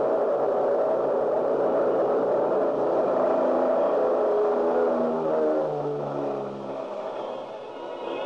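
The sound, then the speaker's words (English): A steady, droning engine roar with a layered hum of mid and low tones, holding level throughout and easing slightly toward the end, like a propeller airliner cruising in flight: the 12 o'clock noon mainliner heading west to Las Vegas, Nevada. “And I barely made the 12 o'clock noon mainliner, which promptly took off and headed west to Las Vegas, Nevada.”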